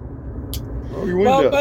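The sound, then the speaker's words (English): Steady low rumble of wind and road noise inside a moving car, continuous throughout, with a person starting to talk over it partway through. “Somebody got wind blowing. Somebody's driving. It's a driving thing.”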